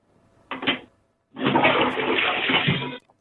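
A toilet flush in a home bathroom: a short clunk of the handle, then a loud, steady rush of water that cuts off abruptly after about a second and a half, with no voices.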